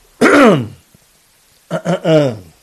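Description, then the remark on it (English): A loud, rough throat clearing with a drawn-out first rasp, then a pause and a quick series of three shorter voiced hacks, with no talking. “Let me clear my throat.”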